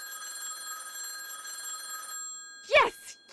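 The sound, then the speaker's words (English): A telephone bell rings steadily with a bright, sustained metallic trill, then cuts off abruptly as a voice breaks in loudly near the end. “Get away from that phone, Alice.”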